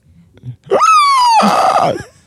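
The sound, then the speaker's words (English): A person imitates the scream of Tom the cat from Tom and Jerry: one loud, drawn-out, high-pitched shriek that slides slightly downward, then turns raspy and strained before cutting off, after a couple of faint breathy sounds. “I was watching Tom and Jerry the other day, and there's this scream that Tom makes that is just absolutely fucking horrifying.”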